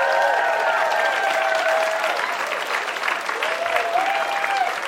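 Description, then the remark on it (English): An audience claps steadily for about five seconds in response to a comedy story from Asif Manvi, a dense, even wash of applause with a few whoops and cheers rising above it. “Let's hear for that one.”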